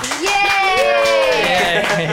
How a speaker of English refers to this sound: We have enough people here just so we can do a healthy applause because it's been, you know.